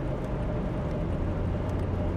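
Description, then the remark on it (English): A steady, low rumbling roar of road noise from inside a car driving on the New Jersey Turnpike, recorded by a recorder set up in the car, constant and unbroken, with no voices or distinct events standing out. “I used to call these things roadkill back in the day when I would set a recorder up in the car and go driving. And I guess this is a roadkill.”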